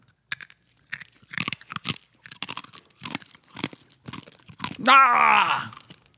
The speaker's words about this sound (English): Yeah. We used to crunch beans. Should we crunch these? I'm going to crunch them. I hate crunching. Let's get crunchy.